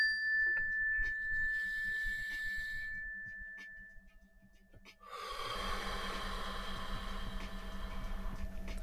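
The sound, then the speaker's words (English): A single mindfulness bell chimes with a clear, sustained tone that slowly fades over a few seconds, followed after a short pause by a loud, drawn-out breath. “But right now, when you hear the mindfulness bell, just take a deep breath, slow deep breath.”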